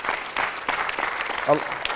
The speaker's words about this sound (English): Because a lot of times, yeah, y'all can clap for that.